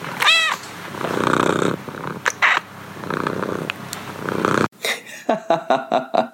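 A cat, Lynn 50, gives a short meow, then purrs steadily in rumbling waves, before breaking into a quick run of about six sharp, rhythmic meows. No one speaks.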